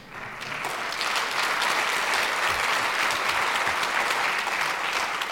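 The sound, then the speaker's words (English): A large audience breaks into sustained applause, a dense, steady roar of clapping that swells within the first second and holds at full strength throughout. “See, that line was a test line to see if you knew when to applaud.”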